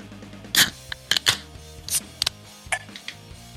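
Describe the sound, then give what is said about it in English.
King Kolsch beer from Black Flag Brewing Company in Columbia, Maryland, poured in short, irregular glugging bursts, about half a dozen splashy gushes over a few seconds, with a faint steady hum underneath and no talking. “Got to get the pour sound in there for sure.”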